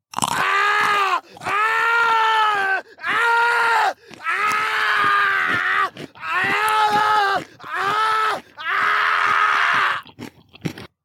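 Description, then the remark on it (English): Loud, anguished screams and strained guttural cries burst out in about seven drawn-out bouts, with crunching, bone-crushing noises mixed in between them. “With the sounds of crushing bones and screams filling the air, I quickly found my way out of the room.”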